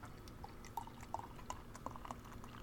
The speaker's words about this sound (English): Tonight I'm going a little across the pond here. I got a Fuller's London Pride. It's one of my favorite English beers, so we're gonna pour that out.